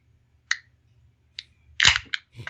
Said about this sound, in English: So right now, live on audio, I don't know. I'm going to open a can of Zombie Dust and try it and see what I think.